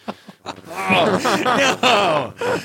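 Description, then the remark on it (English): A voice mimics heavy breathing into the microphone: a few short, sharp gasps, then long, drawn-out voiced exhales that slide into groaning sighs. “Breathing heavy into the mic.”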